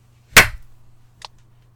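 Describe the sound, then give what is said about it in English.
A single sharp, loud hand clap, made to sync a recording, rings out and decays quickly, followed a moment later by a much fainter, brief tick, all over a low steady hum with no talking. “I'm clapping.”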